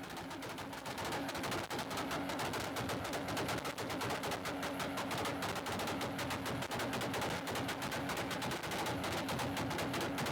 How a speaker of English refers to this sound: For folks listening at home, this is a Mark IV Supra doing its thing. If you're a car fan. It says minute long two-step. Yeah. He's done one for over 2 minutes. Yeah. Most Supras sound like that.